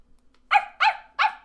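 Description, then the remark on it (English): A person imitates a dog barking: three short, loud 'woof' sounds in a quick, even rhythm, with no other talking around them. “What sound does a dog make?”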